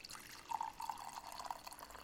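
Macallan 12-year Scotch whisky being poured into a glass, a steady trickle with faint glugging bubbles over about two seconds, quiet and with no one speaking.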